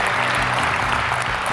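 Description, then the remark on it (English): Dense, steady audience applause for a choir at Community Christian Church fills the whole stretch, a continuous crackle of many hands clapping at an even, fairly loud level with no voices standing out. “How about one more round of applause for everybody?”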